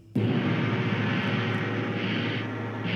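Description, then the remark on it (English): A gong strikes abruptly to announce a segment called Pop Culture Combat, then sustains as a loud, rumbling, shimmering wash with a low hum beneath it, holding steady for several seconds without fading. No one speaks over it. “I don't know if you heard that gong just now, but it sounds to me like it's time for a feature we haven't done in quite some time.”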